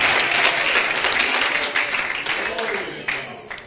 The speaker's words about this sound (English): Oh, let's clap our hands to the Lord here this morning. Hallelujah. Praise God.